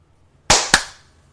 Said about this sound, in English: scoreboard, and we can clap on 24.